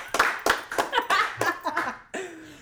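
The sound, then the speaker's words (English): A handful of people in a live show audience at Gotham Halls clap in loose, uneven bursts of sharp hand slaps, mixed with some laughter, for a couple of seconds before it trails off. “Live from Gotham Halls, it's the Nerd Twins. Everybody clap.”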